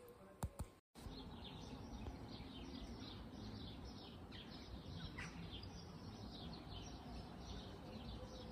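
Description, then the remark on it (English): Birds sing and chirp outdoors just after rain has stopped, on a chilly, windy day, in a steady chorus of repeated high tweets, with a dense background of ambient noise after a brief gap near the start. “Those birds are singing.”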